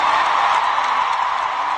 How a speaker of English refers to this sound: From my homeland, there's some very sad news today, the passing of Queen Elizabeth II. Please join me in a round of applause for 70 years of service.